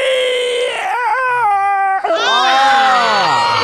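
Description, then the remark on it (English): Loud, close screaming in two long wailing bursts separated by a brief break, the pitch sliding up and down like a shrill howl, with no talking. “Okay, and the screaming stops so the story can continue.”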